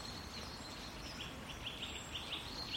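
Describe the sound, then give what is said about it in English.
Faint, high-pitched chirps of birds calling to each other repeat in a quick series over a soft steady outdoor background with no one talking. “Wow, they're chatting to each other. It's like gossiping.”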